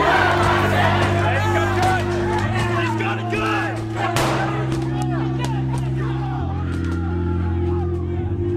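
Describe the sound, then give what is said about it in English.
A large rioting crowd inside the United States Capitol, where glass was broken and people are climbing through, shouts and yells continuously, many overlapping loud voices, with a steady low droning hum running underneath for the whole stretch. “They broke the glass in the United States Capitol, and now they are climbing through. I'm not sure exactly what the police's plan is, but the crowds were so thick.”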